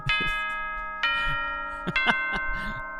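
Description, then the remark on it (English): A clock tower bell chimes with long, sustained ringing tones that hang in the air, struck again several times at uneven intervals, moderately loud. “Clock tower.”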